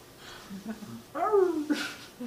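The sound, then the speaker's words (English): A man's voice makes a high, whiny, wavering yelp that slides downward in pitch, imitating a hurt dog whimpering, with faint breathy vocal sounds before it. “You just sound like a hurt dog.”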